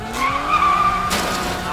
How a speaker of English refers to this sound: We can't outrun them, but we can outturn them. If we try the handbrake slide again... Get your damn hands off the brake! I'll do it! Here goes nothing!